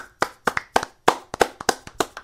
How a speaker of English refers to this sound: Come on, clap your hands, y'all.